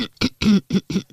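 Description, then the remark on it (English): A quick fit of coughing, about five short, harsh bursts in rapid succession, fairly loud, with no talking. “cough, cough.”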